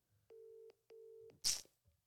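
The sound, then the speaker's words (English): An outgoing phone call's ringback tone sounds a steady double ring, two short even pulses, then a sudden loud, harsh burst of noise cuts in as the ringing stops. “Answer the phone. Please don't answer.”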